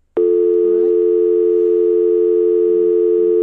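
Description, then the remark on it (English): A telephone receiver is picked up with a click, then a steady, loud dial tone drones on without a break, a faint warble sliding briefly underneath near the start. “And we're going to, I'm going to pick up the phone now.”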